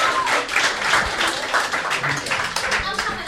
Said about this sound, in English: Can we give him a hand of applause? Thank you.